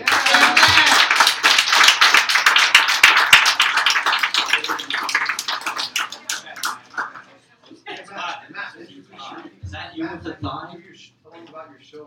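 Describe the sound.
A crowd slaps their thighs in quick, dense bursts of applause for several seconds, a loud patter of hits that fades out as a person starts talking.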